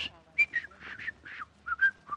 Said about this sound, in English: I just realized, all the years I've been doing that fancy whistling, I must have been getting those pretty whistles through those crooked front teeth of mine. What? They must have been bent just right, because now all I can get is just...